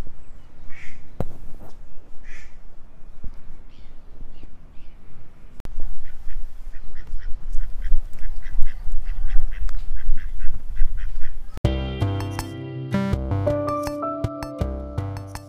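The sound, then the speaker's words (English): A duck quacks several times in short, nasal bursts, recorded around Warkworth, followed by a stretch of rustling background noise before music comes in near the end. “Did you guess what the bird call was? It was a duck.”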